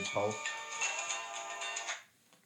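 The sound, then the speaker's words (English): A mobile phone rings with a bright, melodic ringtone of stepped electronic notes, playing steadily for about two seconds before cutting off. “I've left my phone none on silent, and I'm in the middle of a podcast.”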